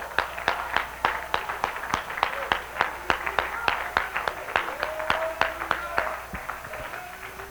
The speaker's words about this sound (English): This time I will praise the Lord. Let's clap our hands.